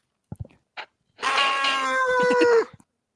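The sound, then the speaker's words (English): A voice imitates the metallic scream of a man in a suit of armor dying in agony as his helmet is crushed: a few short clicks and grunts, then a loud, harsh, strained screech held for about a second and a half, sliding down in pitch before cutting off. “Yeah, like electricity bleeds out of his eyes, and you hear a metallic scream as you do it, as he dies in agony.”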